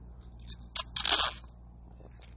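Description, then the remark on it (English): A quick sip from a drink taken out of the fridge: a brief wet click, then a short breathy slurp lasting about half a second, with no talking. “Oh, sorry, just had to have a little sip of my drink here that stole out of the fridge from what was left in here on Saturday night”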